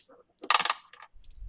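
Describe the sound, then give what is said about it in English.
Dice clatter and tumble across a hard tabletop in a quick burst of bright rattling clicks, fairly loud, as a player rolls for a game check and lands a 12. They settle into a few scattered taps before a low rumble at the end. “I need you to roll plus sharp. Rolling.”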